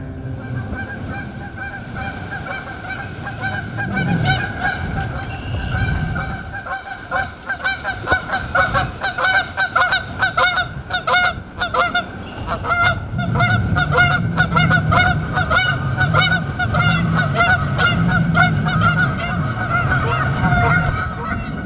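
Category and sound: bird, canada geese honking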